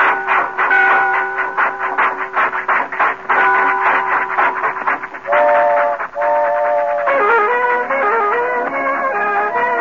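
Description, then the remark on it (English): A train whistle blows loud, sounding long sustained chords that shift in pitch several times as the train departs, with no speech throughout. “All aboard, away we go. Get that little lady on the train, boy.”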